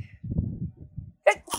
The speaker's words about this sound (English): We've had people's first time, I'm going to sneeze.